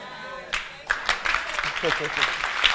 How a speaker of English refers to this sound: Now watch this. Stop clapping.